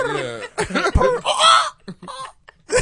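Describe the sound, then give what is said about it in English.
A person imitates pigeon cooing with a few throaty, warbling vocal calls separated by brief pauses, fairly loud. “Like we be making pigeon noises.”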